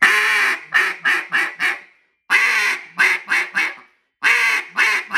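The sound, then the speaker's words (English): A duck call, tuned super stiff, blown hard in raspy hen quacks: three loud descending sequences of about five quacks each, separated by short pauses, alone with no talking. “nice, good, fast feed, good rolling feed, but it's got that real raspy and hard hit hen that I can get on to turn that hen, you know, if she's reaching out there, calling at the sides, or when she's doing that far away from you, your back to you.”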